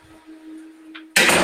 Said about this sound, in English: Let me just close the door real quick.